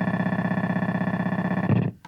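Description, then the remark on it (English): A gritty, heavily distorted electronic buzz from a circuit-bent effects device pulses rapidly and steadily, then swells into a harsher burst before cutting off abruptly. No voices. “Yeah, if you can write it, like, right on the end, it'll kind of get really gritty.”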